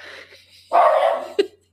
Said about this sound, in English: And then listen to your dog bark.